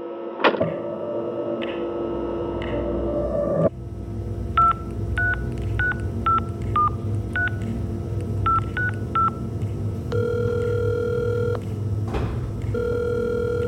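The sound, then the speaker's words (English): A phone number is punched in on a telephone at the FBI as a quick run of short, evenly pitched keypad beeps in small bursts, followed by a few longer steady tones over a low background hum. “Can I use the phone?”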